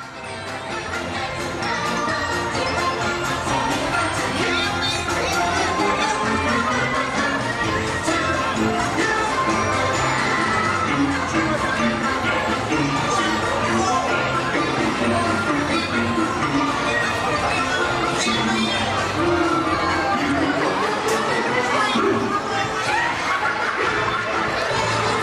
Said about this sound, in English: followed by hordes of Magic Kingdom guests following the parade and, in this case, probably getting ready to leave the party.